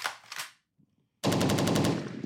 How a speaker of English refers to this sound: I'm gonna have to give you some gunshots for that.